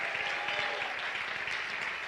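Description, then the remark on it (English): A church audience claps their hands in steady, dense applause, many overlapping claps forming a continuous bright patter that holds at a loud, even level throughout. “Oh, everybody jump your feet and clap your hands and shout hallelujah.”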